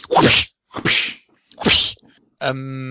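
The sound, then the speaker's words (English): Three loud, sharp slap sound effects from a sound effects board in quick succession, each with a short smacking tail, followed by a steady sustained tone at the end. “I like the slap one.”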